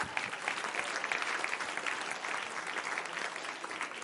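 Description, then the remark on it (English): An audience claps their hands in a steady, dense wash of applause that holds at an even, moderately loud level for several seconds, with no voices standing out. “Somebody clap your hands on what would get ready to happen in the end time.”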